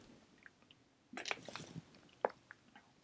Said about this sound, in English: That was some good water. That was not planned, by the way.